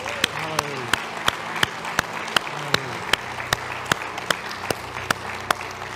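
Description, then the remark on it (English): An audience claps for the Lord during a church service, in steady unison, sharp crisp hand claps repeating at an even, brisk beat for several seconds, with faint voices and a low murmur underneath. “Can we give the Lord a big hand clap today?”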